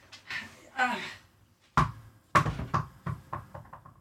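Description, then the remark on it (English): A dog's ball bounces hard on a floor, its thumps coming quicker and softer as it settles into a rapid patter. The dog is named Mo. Someone talks briefly just before the first bounce. “No, I'm not going to throw that fucking ball for you. Bad dog.”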